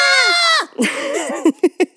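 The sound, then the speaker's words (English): A loud, piercing scream in a movie, from someone seeing a dead body, holds steady for about half a second, then drops away, followed by a run of short, breathy vocal bursts like panicked gasps. “So everybody sees a dead body, and what everybody does when they see a dead body in this movie is scream.”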